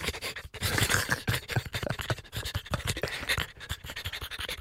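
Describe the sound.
A voice imitates heavy, rapid panting, a steady run of loud, breathy huffs repeating for several seconds with no words.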